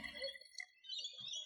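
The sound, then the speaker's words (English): Kilikanoon Clare Valley Mourvedre wine poured into a glass: a quiet, steady trickle and gurgle with a faint, slightly rising ringing tone, heard alone with no talking. “Let's do it. Pouring.”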